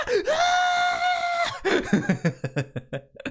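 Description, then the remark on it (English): A person lets out a long, sustained, strained scream for over a second, imitating someone burning, then dissolves into a series of choppy laughs. “He will just burst into flames and scream. Yeah, he's just like, ah!”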